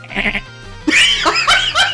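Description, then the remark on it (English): A person imitates a dolphin with high, squeaky chirps and warbling whistles, a short quiet buzz first, then a loud burst of rising and falling squeals in quick bursts. “I won't believe that until I hear you make a dolphin sound.”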